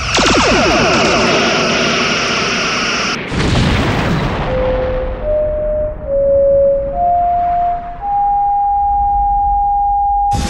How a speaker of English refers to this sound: Fire all phasers.